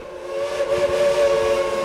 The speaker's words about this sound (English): So when you hear a steam whistle a mile away, there's no one wouldn't say that's one of the coolest things I ever heard. Which is why, for now, the trains are still running and drawing people to Cass, West Virginia.